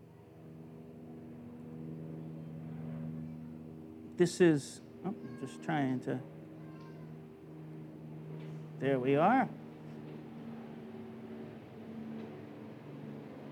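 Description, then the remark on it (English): A helicopter drones steadily overhead for the whole stretch, a low, even mechanical hum holding at moderate loudness while a person speaks a few short phrases over it. “Every time that helicopter goes over, now this is not a conspiracy thing, but every time that helicopter goes over, it seems to affect the internet.”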